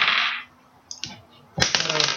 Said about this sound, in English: What is with your dice today? What are you rolling, ones and twos? That's a seven. It's not that bad.